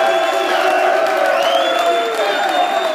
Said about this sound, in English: Let's have another round of applause for all the volunteers here at the University of Tennessee.